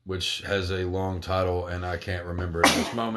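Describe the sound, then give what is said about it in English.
A man talks steadily, then a sudden loud, sharp sneeze bursts out near the end before his speech resumes. “Bless you, my son.”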